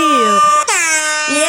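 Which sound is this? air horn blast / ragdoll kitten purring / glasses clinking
air horn blast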